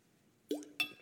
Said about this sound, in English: Ooh, crash. Clunk of the glass. That will sound good on the recording, won't it?